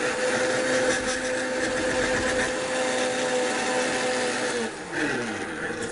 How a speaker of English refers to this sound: So what we're going to do is we're going to go over to our blender here and just blend them up real quickly. In they go. Blend them up.